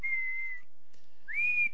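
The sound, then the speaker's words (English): A person whistles two sustained notes, a long steady pitch followed by a brief pause and a rising, held tone, clear with no talking. “I'll whistle it myself.”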